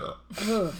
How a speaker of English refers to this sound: I'm going to burp.